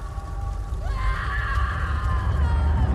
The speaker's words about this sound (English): He screams, long, high, and wet with sorrow and despair.